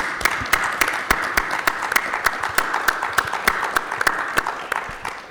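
A crowd applauds steadily, with many overlapping claps forming a dense, even wash and a few sharper individual claps standing out. It holds fairly loud throughout, with no voices.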